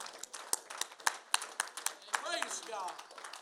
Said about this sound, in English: Let's give the Lord another round of applause before we're seated. Amen.